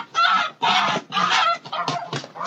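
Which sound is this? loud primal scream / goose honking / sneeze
goose honking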